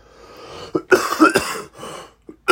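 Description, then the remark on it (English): A fit of harsh, phlegmy, painful coughing, loud: a short hack, then a rapid string of rough coughs, a pause, and two more bursts at the end, with no talking. “The coughs have been awfully phlegmy this morning. And so fucking painful.”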